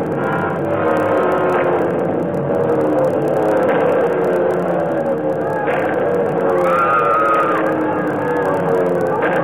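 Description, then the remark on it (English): German warplanes dropping out of the sky and swarming down toward a road and a bus, a loud, unbroken engine roar with rising and falling whines sweeping through it, overwhelming for the whole stretch. “And then the planes came. German planes. They dropped out of the sky, swarmed down toward the road and the bus.”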